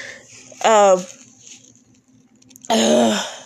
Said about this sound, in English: I'm blowing my nose and my throat is sore. I have this stupid cold, so I know people don't like it when you blow your nose because apparently it's gross, but I can't breathe out of mine, so I'm gonna blow it.